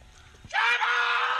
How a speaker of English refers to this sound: This family, their doorbell was broken. They ordered a pizza and they told the delivery guy, hey, just scream when you're here. I love this.